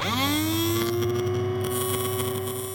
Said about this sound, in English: Dentist drills might make a loud sound, but they're tiny.